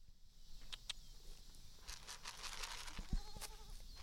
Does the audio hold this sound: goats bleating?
yes